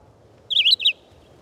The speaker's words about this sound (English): The abundant red-eyed vireos in the treetops can become monotonous in the regularity of their short, robin-like phrases.